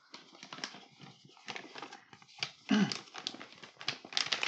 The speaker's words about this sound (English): Disregard all the paper crumpling. Some ASMR here a little yes.